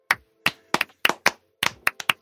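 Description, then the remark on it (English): Hands clap about ten times in a loose, uneven rhythm, sharp crisp smacks that come singly and in quick pairs, with no talking; a clap-in made where it is negative 35 degrees. “Want to clap in? Yeah, you want to clap in?”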